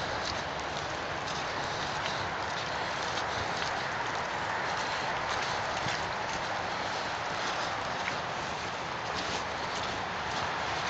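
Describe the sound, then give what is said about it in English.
Wet, squelching footsteps of a person walking with four dogs through very muddy ground trudge in a steady walking rhythm, set against a constant hiss like rain or wind that stays at an even level throughout, with no one talking. “So I don't know if you can hear the squelching under my feet”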